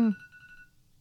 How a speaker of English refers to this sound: Oh, there's that alarm. I still haven't stopped that alarm.